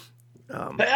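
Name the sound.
sneeze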